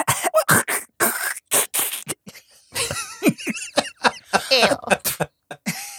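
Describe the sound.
A person coughs in a quick series of harsh bursts, then breaks into strained gagging and sputtering noises as if spitting out thieves' tools, all acted out vocally.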